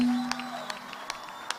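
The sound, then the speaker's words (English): An audience claps for Jesus in steady time, four or five sharp claps spaced evenly over a faint background hum, with a brief low held tone at the start. “Clap hands for Jesus.”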